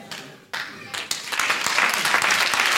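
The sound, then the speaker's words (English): Audience applause swells from a few scattered claps into a dense, sustained wash of clapping from a crowd, with some voices mixed in underneath. “So now, instead of clapping, you have to choose where you stand.”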